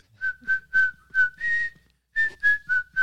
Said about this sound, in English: He's got a 4-minute track where he just whistles. Wow. I know. That's bold. Yeah. Soothing.